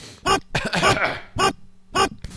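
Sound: blowing nose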